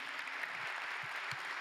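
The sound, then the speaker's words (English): An audience applauds the Haslett campus one morning in a steady, dense wash of clapping, many hands at once at an even moderate level, with no voices standing out. “Let's give them a round of applause this morning.”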